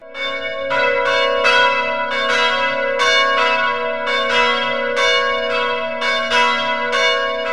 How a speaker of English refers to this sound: In England, for the first time in 3 years, the church bells rang out in victory.